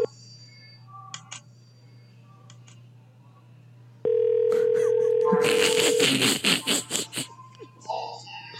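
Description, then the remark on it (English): A loud, steady phone call ringing tone sounds for about two seconds, joined then followed by clattery, bursting noises. Faint tonal chirps come earlier over a low hum. “Oh, yeah, I can hear it ringing, look.”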